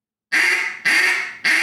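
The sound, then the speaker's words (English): A reed duck call blown in three loud, raspy quacks, each harsh and buzzy with a slight fade, following one another in a quick, even rhythm. “Yeah, you can hear it. You can hear the rasp in it.”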